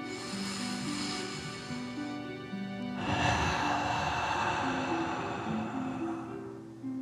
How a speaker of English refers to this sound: As you continue to float, let's take 3 more deep dragon breaths. Breathe deep in and out.